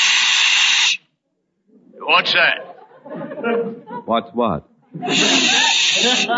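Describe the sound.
A person makes a loud, steady hissing sound with their mouth for about a second, two voices briefly speak, then the long sharp hiss returns and carries on.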